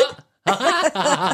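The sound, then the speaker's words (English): One sharp hiccup, then a short pause and a stretch of wavering, voiced vocal sound, loud, like breathy laughing or sing-song talk. “There's the hiccup.”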